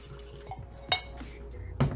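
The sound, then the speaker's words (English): Whiskey pours into a glass, a soft trickling splash broken by a couple of bright glassy clinks and a final knock near the end. No one speaks. “That's a pretty good pour, in my opinion. Pour.”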